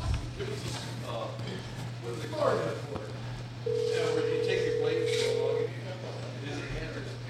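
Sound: outgoing telephone call ringing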